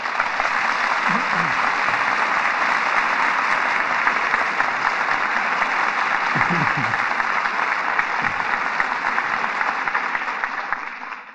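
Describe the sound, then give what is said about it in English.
Sustained studio audience applause for the evening's drama stars, Humphrey Bogart and Walter Huston: a dense steady wash of clapping that holds at full strength for about eleven seconds before tapering slightly at the end, with faint low murmurs underneath. “For drama that rates the applause of this audience, our thanks go to this evening's stars.”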